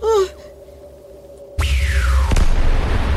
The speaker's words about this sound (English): Oh no! Explosions!